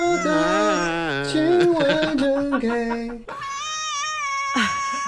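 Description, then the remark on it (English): A cat yowls in a long, wavering, tuneful meow that steps down in pitch, then holds a higher sustained note before a short rough burst at the end, sounding almost like singing. “The cat is singing.”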